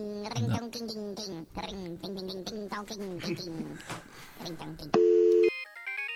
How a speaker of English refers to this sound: Oh, my phone's going off. Oh. Like my new ringtone.